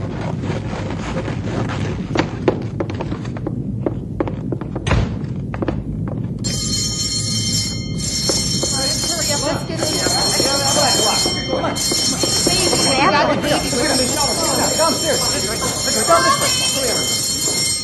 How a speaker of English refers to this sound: I'm going to sound the alarm and get everyone into the shelter.